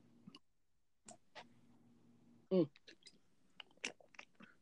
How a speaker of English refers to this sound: Excuse me. I was getting a sip of Gatorade there.